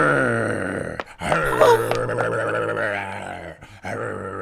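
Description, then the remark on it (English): A man's voice imitates a lion's roar, playing the Lion in a stage scene of Pyramus and Thisbe, with long, throaty, growling bellows, two brief breaks splitting it into three sustained surges of loud, rough, low-pitched sound. “Well roared, lion.”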